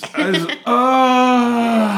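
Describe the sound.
A voice makes a fart-like noise: a few quick voiced sputters, then one long, steady, buzzy low tone held for over a second, sagging slightly in pitch at the end.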